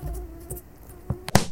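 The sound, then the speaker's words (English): A thin, steady mosquito buzz hums for about a second, then a few dull thumps and a sharp louder knock cut in at the end. “the app is programmed to recognize the mosquito's shape in a dark corner somewhere, or its flight pattern if it's moving around, and it'll tell you where the mosquito is.”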